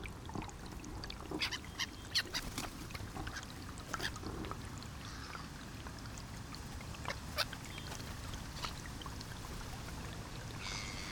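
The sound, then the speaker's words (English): A flock of whooper swans, migrants from Iceland that arrive from around October, calls across a loch, overlapping honking and bugling notes rising and falling over a steady, rushing outdoor background. “About one third of the world's population of hooper swans come to the loch from around October onwards.”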